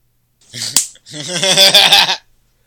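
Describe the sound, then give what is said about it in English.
A single sharp hand clap cracks out briefly, sandwiched between stretches of a person's voice talking or vocalizing in a wavering, melodic tone. “Like, if I need you to clap your hand right now.”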